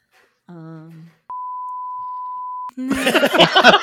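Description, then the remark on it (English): A single steady electronic beep, a clean high tone held for well over a second, cuts in after a short voiced sound and is followed by loud, busy voices. “Oh, the beeps start early.”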